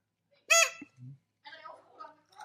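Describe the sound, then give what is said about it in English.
A single loud, harsh crow caw sound effect rings out briefly near the start, followed by a low thump and then people talking quietly. “And she put on the crow.”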